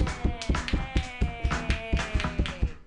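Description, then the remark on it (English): A comedy show audience claps hands for a comedian in a steady, even rhythm, about four sharp claps per second, with a faint sustained tone humming underneath and no voices. “Everybody clap your hands together for Ian.”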